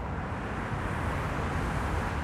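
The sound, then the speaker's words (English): Highway traffic passing below Tantur's hilltop, at a crossroads of major highways, as a steady, unbroken roar, mostly deep rumble with a hissy wash on top, holding an even loudness throughout with no voices. “Traffic whips by below Tantur's hilltop in a way that would make Chicago commuters feel right at home.”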